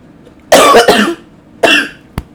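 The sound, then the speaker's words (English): A person coughs hard: a raspy double cough, a short pause, then one more harsh cough, with no talking around it. “Anyways, before I have a cough attack, I'm gonna get my ass off of here.”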